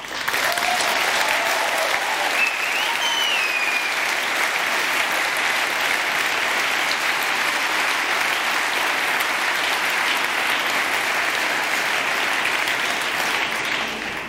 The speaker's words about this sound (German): Je länger ihr klatscht, desto mehr überziehe ich. Das kann ich gleich sagen.